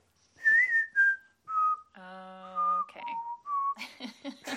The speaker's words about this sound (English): I can't whistle and laugh.